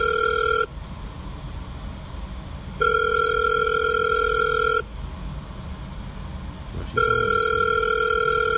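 An outgoing call's ringback tone repeats in steady electronic bursts of about two seconds, separated by equal pauses, loud over a low background rumble, with no one speaking.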